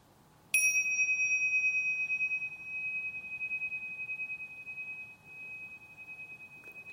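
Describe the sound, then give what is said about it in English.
A single gong strike rings out with a clear, high metallic tone that hangs in the air and slowly fades over several seconds, with no one talking. “the class was invited to listen to the sound of a gong.”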